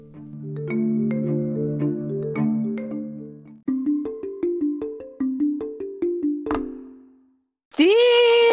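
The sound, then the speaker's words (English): An Abundance Bell rings out a bright melodic run, first blended sustained tones, then a quick series of crisp struck notes that decay, ending after a short pause with one loud, sustained ringing tone. “Look at that energy coming on with it. Abundance Bell.”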